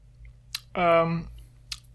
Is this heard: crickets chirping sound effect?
no